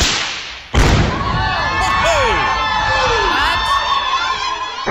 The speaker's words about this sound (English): Tannerite. She sounds angry. Well, she hit it on the first shot. I'm sure she did. People heard the explosion 15 miles away.